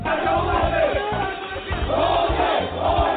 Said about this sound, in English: The protests aren't just continuing, they're growing, with tens of thousands turning out in Yangon, shouting anti-military slogans and demanding the release of Aung San Suu Kyi and others detained since last Monday.